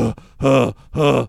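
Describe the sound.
A man imitates heavy, winded breathing: two loud, groaning huffs in quick succession after a short, fainter one, with no other speech.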